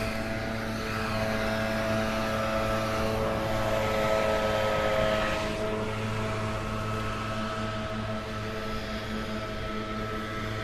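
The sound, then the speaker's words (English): A man uses a leaf blower to blow grass in the middle of a field, its loud two-stroke engine droning with a buzzing, harmonic whine that holds nearly constant throughout, with no voices. “There is a guy blowing grass, like he's out in the middle of a field with a leaf blower blowing grass.”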